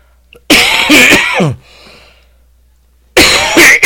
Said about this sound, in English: Sorry about that, guys. Didn't mean to cough so loud in the microphone. mine's just allergies.